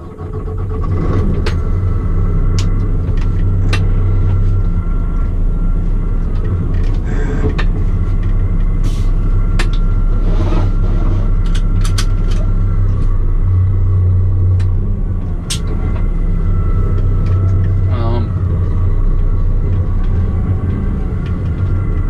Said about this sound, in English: Truck's got 9 speeds, but I found that you can even start out in second, or depending on how steep of the road is, you can a lot of times start out in third too. So second's usually the gear of choice I start out in.